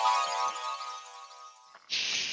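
A phone ringtone plays alone as the ringtone of a magical device called a Rolly, a bright electronic tone with rich harmonics holding steady for almost two seconds, then giving way to a brief burst of harsh hiss.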